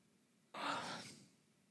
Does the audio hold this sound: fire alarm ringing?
no